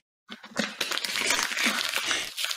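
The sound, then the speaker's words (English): An empty plastic water bottle is crushed and ripped in half by hand, without scissors, giving a continuous crackling and crinkling that lasts a couple of seconds with bursts of sharper snapping. “No, the water bottle. Make it in half, so it's a cup. I don't have scissors. Rip it.”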